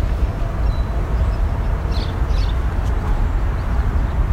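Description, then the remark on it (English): A house sparrow, sticking its head out of a nesting box, gives two quick, faint chirps in the middle, nearly buried under a constant low rumble of traffic and trains from highways and train lines across the water, at a spot with willow, walnut and oak trees. “A house sparrow calling.”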